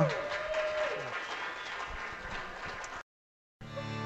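A crowd applauds steadily for about three seconds, a dense wash of clapping, before a brief silence and then a buzzy, humming return of sound.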